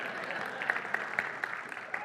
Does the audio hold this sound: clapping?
yes